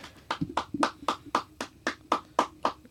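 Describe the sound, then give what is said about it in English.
A steady run of about ten sharp hand claps at an even, brisk rhythm, fairly loud, with a faint low murmur underneath and no clear talking. “Why are you clapping?”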